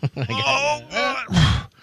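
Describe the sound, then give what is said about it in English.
A man groans and strains while leaning over to move a seat forward, in a series of drawn-out, effortful vocal grunts, fairly loud, ending in a rough, breathy push before trailing off. “But as he's leaning over, moving the seat forward, do you remember what that sounded like”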